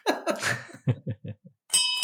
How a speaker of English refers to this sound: Well, as the landlord rings the bell for final drinks,